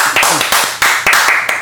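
One person claps their hands several times, loudly, with sharp smacks at uneven intervals and a faint murmur of background noise between them.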